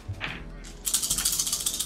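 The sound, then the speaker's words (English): A handful of dice clatter, then settle into a quick, steady run of bright, clicking rattles that repeat about a dozen times before stopping, alone with no talking. “You didn't like the sound of all those dice?”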